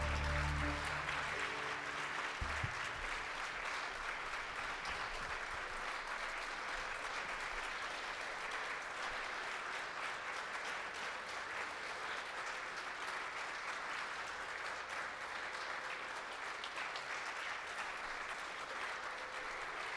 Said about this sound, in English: They truly deserve this standing ovation, and of course, maybe another round of applause.